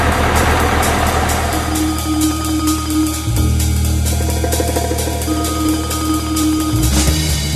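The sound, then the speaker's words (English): A bus engine drones loudly and steadily, its low rumble dipping briefly twice as the vehicle shifts gears while driving along the road, on an all-night bus ride to two small towns in Minnesota. “I rode the bus all night long to two little towns up there.”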